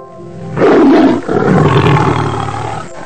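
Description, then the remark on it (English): A lion roars loudly in two long, rumbling bursts back to back, the second drawn out and fading slowly. No voices are heard. “A long time ago, a sheep passed by in the animal kingdom and saw a lion crying in a trap.”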